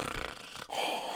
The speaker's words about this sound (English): We have not seen Iroh either since he was in a jail cell. Mm-hmm. And here he is, happily, cartoonishly snoring.